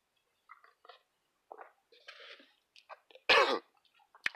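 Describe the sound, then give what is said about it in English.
Someone takes a drink: quiet swallows, lip smacks and a brief slurp, then a sudden loud cough or sputter near the end, with no talking. “Gotta take a sip.”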